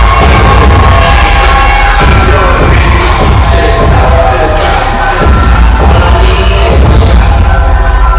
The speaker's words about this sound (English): This is Chris Bay, who's a Bullet Club Chris Bay. They're booing him. Someone's got the boo sign up.